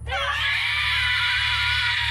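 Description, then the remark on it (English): A woman lets out a loud, sustained shriek, high-pitched and piercing, holding steady for about two seconds over a low background hum. “And she shrieks at him.”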